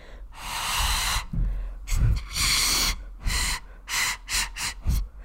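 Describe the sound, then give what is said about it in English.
Homemade pan pipes made of cardboard straws of differing lengths put together, blown in a string of airy, hissing puffs, one long breath followed by several shorter bursts, mostly breath noise with little clear pitch. “I tried making my own pan pipes out of basically like cardboard straws.”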